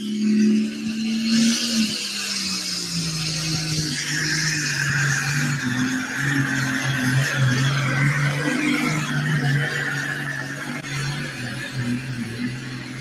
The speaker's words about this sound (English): Well, he's the first tractor out. He's got that option to elect that hook or reject it.